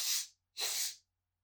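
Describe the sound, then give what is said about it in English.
A person imitates a dog sniffing on a walk in an unfamiliar place, with two quick, breathy hissing bursts of air, the second slightly longer than the first, with a short pause between them. “We need to do a lot of sniffing on this walk because that's how I know where I am.”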